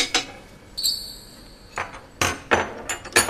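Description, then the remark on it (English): Metal pliers and a big wrench clank and knock against a mess of lab pipes and valves used to pressurize cylinders, in a series of sharp, bright impacts, one followed by a sustained ringing tone, then several irregular clanks in quick succession, with no talking. “is fighting with a mess of pipes and valves she'll use to pressurize the cylinders.”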